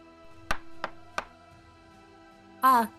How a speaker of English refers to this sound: And at this point, you would probably hear a soft knock at your door.